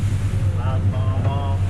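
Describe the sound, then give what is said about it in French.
A boat out at sea carrying about ten people who scan the horizon for whales, dolphins or turtles: a steady low engine drone under constant rushing wind and water noise, loud, with faint muffled voices drifting through now and then. “Nous sommes une dizaine de personnes sur le bateau avec Michael Poole, le chef de l'expédition.”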